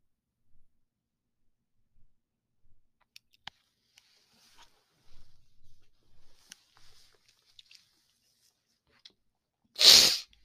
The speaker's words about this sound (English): I almost sneezed again.